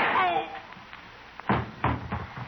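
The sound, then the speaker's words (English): Two sharp gunshot sound effects crack out close together, loud, right after a brief voice trails off, with a faint hollow hiss underneath; in a drama, the Judge shoots a man right through the heart. “Right through the heart. That's where I aimed.”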